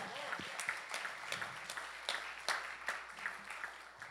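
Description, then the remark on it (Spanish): A crowd applauds the fathers on their day, steadily for several seconds, a dense wash of many hands clapping with a few sharper claps standing out above the rest. “Le podemos dar un fuerte aplauso a los padres en este día.”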